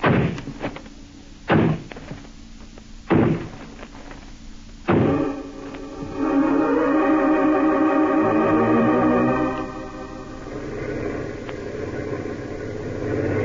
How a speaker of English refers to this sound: This is the place. It's a dance hall and tavern. They won't open up for us. All right, men. Smash down that door.